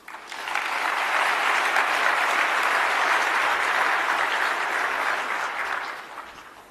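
An audience applauds steadily for several seconds as a speaker takes the stage to give a talk, a dense wash of overlapping hand claps that swells in quickly, holds at an even level, then tapers off toward the end.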